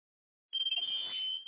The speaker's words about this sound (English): The smoke alarm is blowing off, y'all.